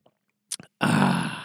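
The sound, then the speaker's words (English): A few faint mouth clicks, then a quick slurp of a sip of water, followed by a loud, satisfied breathy 'ahh' exhale. “I'm going to take a sip of this fine high-quality H2O”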